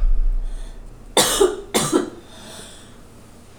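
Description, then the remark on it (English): Two sharp, forceful coughs about half a second apart, loud, after smoking a joint, followed by a quiet pause with faint background noise. “We can all tell when the joint has been lit. I know. Cough starts acting up.”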